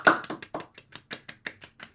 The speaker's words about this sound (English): Golf claps.